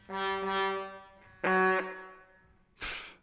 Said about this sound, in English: And finally, in case we take a comedic turn, some car horns.